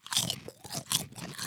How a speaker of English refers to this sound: Now these are the kettle chips, so they're nice and crunchy like we like. They're not ugly. Now every chip is beautiful in its own way.